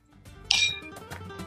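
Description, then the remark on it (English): Two glasses clink together in a toast, one bright ringing chime that lingers briefly before fading, over a low background murmur. “Cheers to you. Cheers to you, cuz.”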